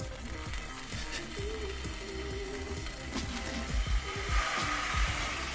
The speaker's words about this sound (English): Let's hit the frying pan. The frying pan. It's just a little light little fry, just to heat them up, you know? You want cold hot dogs.